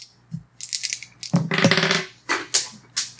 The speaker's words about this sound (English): So 3 discipline? You are going to roll your discipline dice. Give me your discipline roll.